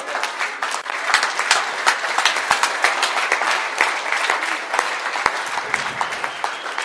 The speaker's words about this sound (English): Can you clap your hands?